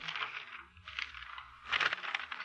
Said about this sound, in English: The sound of the flipping pages. Your daughter's phone number.